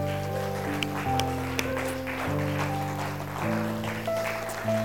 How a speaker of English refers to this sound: And everybody said, can we do something? Can we give God a clap? Amen.